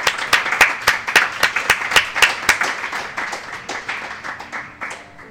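Audience applause at the end of a live conversation event, Eggrolls with Andy, at Theater Pass Mirai: a steady run of sharp, bright claps that keep up a loose rhythm and gradually thin and soften toward the end, with no voices.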